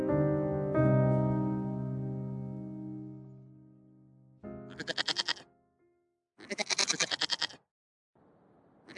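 goats bleating

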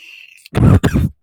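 cough

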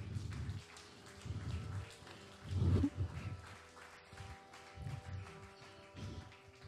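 audience applause

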